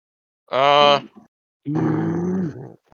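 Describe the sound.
A voice imitates Tusken Raider cries: two loud, harsh bursts, a rising guttural yell followed by a longer, raspy growling howl, with a pause between them.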